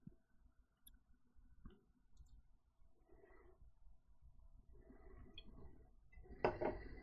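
Quiet handling of a Craft Computing nucleated pint glass and a beer bottle: scattered taps and soft clinks of glass being set down and moved, ending with a brighter, louder ringing clink.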